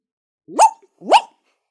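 A dog barks twice, two short, sharp, evenly spaced woofs against an otherwise silent background.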